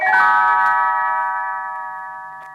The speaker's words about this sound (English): You will know it is time to turn the page when Tinkerbell rings her little bells like this.